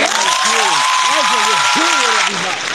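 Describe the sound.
Steady, dense applause from a crowd fills the whole stretch, loud and continuous, with a voice speaking over it before the clapping thins slightly near the end.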